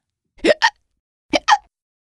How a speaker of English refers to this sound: A hiccup. That's right. It's a hiccup. We don't know why exactly people hiccup, but we do know which muscle makes it happen.